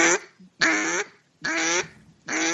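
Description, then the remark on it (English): A person imitates a duck with a dragged-out, nasal quack, four loud bursts in a steady rhythm with brief pauses between, and no other talking. “There's a dragged out quack.”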